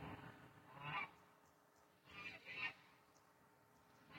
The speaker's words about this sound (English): They're really having a good time out there. Those are my Chinese geese. They speak the Chinese.